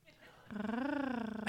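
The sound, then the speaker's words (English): A person does a vocal imitation of a cat's purr, a steady rolling hum with a quick fluttering pulse that lasts about a second, followed by a brief breathy noise. “Throwing in the purr.”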